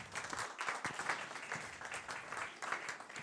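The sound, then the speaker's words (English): An audience applauds steadily, dense overlapping claps from a crowd at moderate loudness for a few seconds, with no voices standing out. “Round of applause.”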